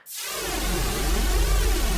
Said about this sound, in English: So this is just its noise generator. And there's a bit of high pass filtering that gives it the little at the beginning. And then that's put through a couple of different chorus and distortion effects and gives it some animation.